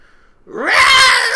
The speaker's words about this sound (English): A mean-looking, malnourished black cat jumped into the house. Claws out, it tore through our sofa and screamed.